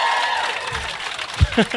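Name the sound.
audience applause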